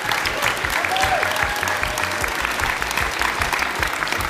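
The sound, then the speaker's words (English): A live audience at the Bread and Circus World Buskers Festival applauds steadily, dense clapping from many hands filling the space at a constant loud level, with a faint whistle briefly cutting through near the start. “We'll have another round of applause for everyone over there.”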